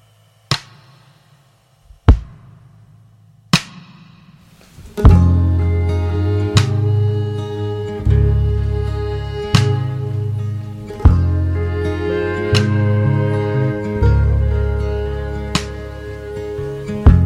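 An instrumental intro opens with a few sparse, sharp taps over a low hum, then a full band kicks in loudly with deep bass, sustained chords and a steady beat accented every beat and a half.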